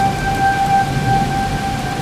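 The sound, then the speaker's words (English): Steady rain hisses throughout while a low thunder rumble rolls underneath as a storm moves away, with a faint constant high-pitched tone lingering in the background. No one speaks. “And the noise has gone down to the point where you can hear the thunder again.”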